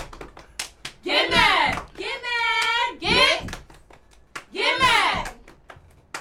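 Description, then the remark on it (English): A cheer squad of girls chants a rhythmic cheer in bursts, punctuated by sharp hand claps between and under the shouted phrases, loud and energetic. “Okay, I need a cheer. I just need a cheer.”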